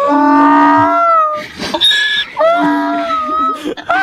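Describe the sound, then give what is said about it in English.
A rusty door in an old house creaks open and shut several times, each swing a loud, drawn-out groaning squeal with wavering pitch, oddly like a braying animal, without any talking. “It's just a rusty door in an old house being opened and closed. Over and over again.”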